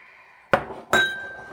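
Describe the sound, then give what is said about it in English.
Two sharp glass clinks about half a second apart, the second one ringing on with a bright, sustained high tone, as Woodford Reserve Kentucky bourbon is poured into a glass. No voices. “All right, I'll pour some water in here, and you get ready to pour that regular Woodford Reserve that we picked up.”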